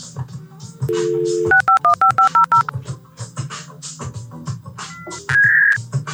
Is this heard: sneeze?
no